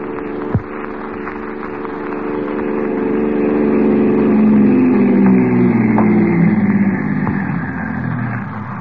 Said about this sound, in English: Here's the car.